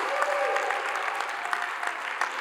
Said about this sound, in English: Keep clapping.